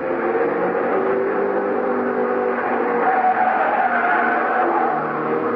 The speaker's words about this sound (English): They were still testing cars, but the people watching the test winced as the cars thundered by, just as if they expected the autos to fall apart any second.